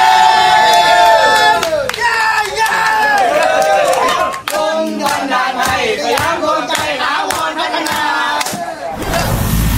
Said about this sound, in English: So you heard how they were cheering, how they were dancing in the streets. They were glad. People all around the world cheered.